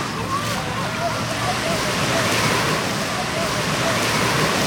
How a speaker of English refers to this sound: And we're now, like, standing at the Atlantic Ocean. Yep. I'm just gonna jump in, okay?